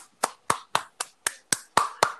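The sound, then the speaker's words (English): A single person claps eight times in a steady, even rhythm. The sharp claps come alone, with no voices in between. “I applaud you as a fan.”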